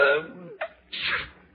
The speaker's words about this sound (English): Gesundheit.